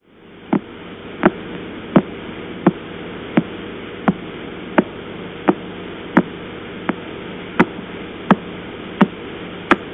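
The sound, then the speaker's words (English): A pulsing radio signal recorded with the Lovell radio telescope pointed at a part of the sky away from Cassiopeia A: sharp, evenly spaced clicks, roughly fourteen in ten seconds, ticking steadily over a constant hiss of static with a low hum beneath. “However, we can imagine moving our telescope off Cassie, the exciting supernova M that produces the rather boring sounds, pointing in another direction in the sky, and this is what we hear. Again, a recording made with the Lovell telescope.”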